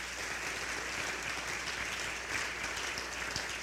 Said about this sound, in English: Let's clap our hands to the Lord.